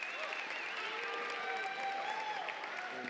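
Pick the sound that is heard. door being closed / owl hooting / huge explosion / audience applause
audience applause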